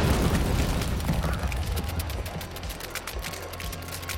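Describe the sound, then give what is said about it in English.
A heavy grenade explosion sound effect: a deep, rumbling boom that rolls on for several seconds with crackling, debris-like bursts scattered through it, slowly easing off. No voices are heard. “It crawls through the window, right over a creature's shoulder, and you see it just moves on out there, and you hear this, and then an explosion happens.”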